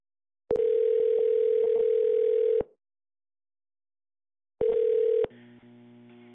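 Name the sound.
telephone dial tone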